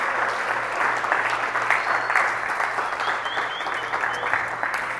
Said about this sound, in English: Why don't we clap it up for Pastor Josh stepping into that?